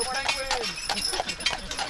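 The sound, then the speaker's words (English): Hooves of a horse-drawn carriage clip-clop at a steady walking pace on hard ground during a battlefield tour at Gettysburg, with faint outdoor background noise around them. “You can even do a battlefield tour in a horse-drawn carriage.”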